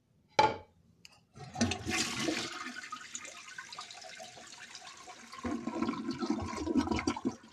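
A toilet flushes. A sharp click of the handle comes first, then a loud rushing gurgle of water that churns steadily and swells again toward the end as the tank refills.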